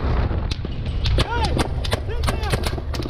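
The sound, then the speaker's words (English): Gunfire from a gun mounted on an army truck on a dark highway in a Mexican border town: a rapid, irregular string of sharp, loud cracks over a constant low engine-like rumble, with raised voices shouting in the background. “you're about to hear gunfire”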